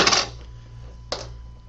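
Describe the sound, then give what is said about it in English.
Metal scissors and a letter opener clink together twice, a bright ringing tap at the start and another about a second later, over a faint steady hum. “I've got my tools of the trade today. Scissors. Letter opener.”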